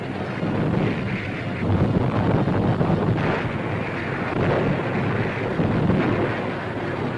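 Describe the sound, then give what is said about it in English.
Landing boats bringing reinforcements to a beachhead during a battle roar steadily through rough, choppy sea, engine drone blending with wind buffeting and the constant wash of waves, loud and unbroken throughout. “More landing boats, bringing reinforcements, race through the choppy sea to land on the beachhead as the intensity of the battle increases.”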